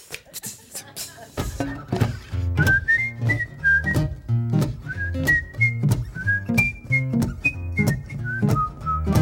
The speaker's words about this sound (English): Oh, yeah, whistling.